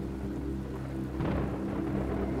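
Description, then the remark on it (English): Deep, continuous rumbling thunder from the first lightning bolt of a thunderstorm over Wonderland, a steady low roar swelling into a louder, brighter crackling burst about halfway through before settling back into a sustained rolling rumble. No voices. “You watch as the first bolt of lightning shoots down.”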